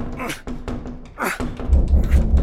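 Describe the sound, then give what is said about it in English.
Heavy push doors that are supposed to lead outside are shoved against without giving way: dull thunks and rattles, ending in a quick run of four deep, booming thuds. “They're push doors.”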